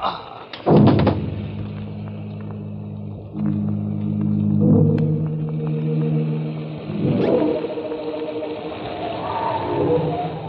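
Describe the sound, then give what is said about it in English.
A sudden heavy explosion of dynamite planted in the ground level of the Jellicoe Lighthouse during a lashing gale bursts out, then gives way to a long, deep rolling rumble with droning low tones, swelling again into a second rumbling surge before slowly fading. “Planted the dynamite in the ground level of the Jellicoe Lighthouse during the lashing gale.”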